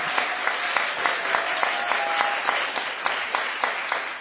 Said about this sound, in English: This is a 15-year-old young girl. Let's please give her a round of applause.